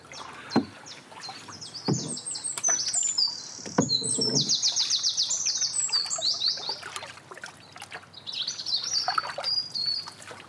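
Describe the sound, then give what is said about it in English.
Robin and blackbird song, with chiff-chaff, fills the air in bright, warbling phrases and high trills, with occasional low splashes and knocks of a small boat paddled along the Somerset Coal Canal on a sunny day. “Was that a blackbird or a robin, Dan? Got robins, I think. Yeah, mostly got blackbird as well. Got chiff-chaff.”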